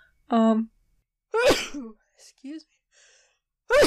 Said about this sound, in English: Excuse me. I'm gonna have to definitely turn down the amplification on those sneezes. So anyways, they're gonna sound really quiet when you hear them.